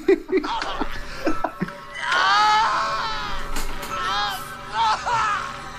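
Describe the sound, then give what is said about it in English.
A man's dying cries heard over a walkie-talkie whose button he keeps pressed: a few short strained gasps, then long, loud, wavering moans and wails that rise and fall in pitch, repeating several times. “We can actually hear him die through his walkie-talkie.”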